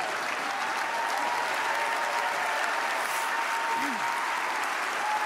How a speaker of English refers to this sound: Lots of clapping.